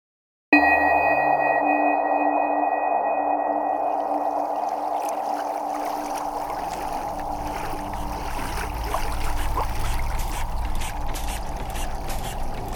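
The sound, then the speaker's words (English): An old boat engine with large pipes, valves and wheels, tended by a man, starts abruptly and keeps running in a loud, steady drone with a humming tone and a deep rumble that thickens toward the end; no voices. “he's tending to the boat's noisy engine. A strange engine, with large pipes and valves and wheels, like something out of a history museum.”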